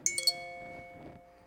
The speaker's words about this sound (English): Here we go. What are you doing? Are you worrying that was your phone?